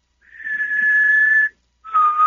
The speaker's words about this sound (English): I can whistle two ways too